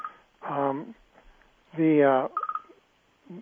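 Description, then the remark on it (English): A quick run of electronic mobile phone beeps, four short tones in a row, rings out between fragments of a person's voice. “I didn't realize my phone was going to be on here.”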